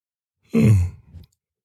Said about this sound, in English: Yawning on the show. Oh, God. You're boring me.